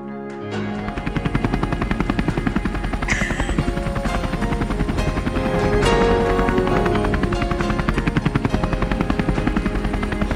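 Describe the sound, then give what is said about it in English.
A helicopter's rotor chops in a fast, steady rhythm, loud overhead, the thudding swelling slightly midway and continuing unbroken with no voices. “Is there a helicopter? Is there a helicopter? Of course there's a helicopter.”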